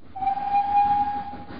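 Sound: train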